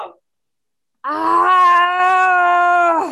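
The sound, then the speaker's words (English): A loud, sustained scream from a single voice, holding a steady, fairly low pitch for about two seconds before cutting off, preceded by a brief vocal fragment and a short pause. “And say one big scream.”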